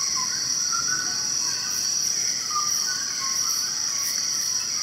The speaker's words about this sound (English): So this is a dawn chorus, and you're just hearing loads and loads and loads of birds all calling at once as they all wake up. It's so rich. Yeah. And it's like, it is very loud. These birds are completely surrounding you, and they're up in the canopy